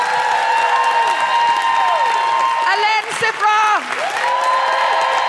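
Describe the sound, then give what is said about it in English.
Loud, sustained applause and cheering from a large audience fills the room, with a voice calling out over the clapping partway through. “For now, can I just say a big round of applause to”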